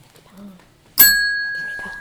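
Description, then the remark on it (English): A single bell is struck once, ringing out with a sharp, bright strike and a long sustained metallic tone that slowly fades. Faint murmuring sounds come just before the strike. “All right, are you ready to hit the bell again?”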